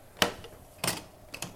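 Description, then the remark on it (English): Several sharp knocks on a door late in the day by a trick-or-treater, in an uneven pattern: a single rap, a heavier thud, then two quick raps close together. Each hit is short and crisp, with no voices. “It's a bit late in the day to somebody knocking”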